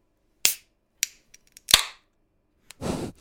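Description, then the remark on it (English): Several sharp metallic pops ring out one after another as drink cans, one a beer with lemon, are snapped open for a cheers toast, and the last crack is followed by a brief hiss of fizz. No one speaks. “Am I the only one who popped thus far?”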